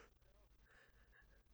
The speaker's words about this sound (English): I'm instantly yawning. Oh my goodness. Oh no.